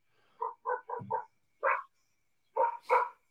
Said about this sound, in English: Man, it sounds like them dogs are literally in your house, bro. They're like five houses down that way, even. Damn, they're noisy. How big do you think they are? Little. They're not big dogs. They're little.